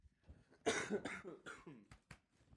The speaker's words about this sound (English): It's cough. What is coughing?